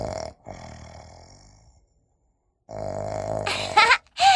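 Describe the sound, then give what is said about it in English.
A voice imitates a little pig snoring in its sleep: two long, rumbling, nasal snores separated by a short silence, the second ending in a few sharper snorting bursts. “Little pig snores in his sleep.”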